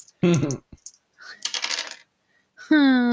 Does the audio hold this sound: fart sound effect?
no